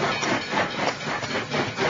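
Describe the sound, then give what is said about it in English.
A rapid train rushes past, a loud, dense roar with a steady rhythmic clatter of wheels pulsing through it, filling the whole moment with no voices. “Just then, there came a vague vibration in the earth and air, quickly changing into a violent pulsation and an oncoming rush that caused me to start back as though it had forced to draw me down.”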